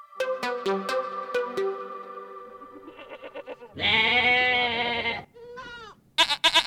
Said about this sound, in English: I know I said we take students from all walks of life, but that does not include goats.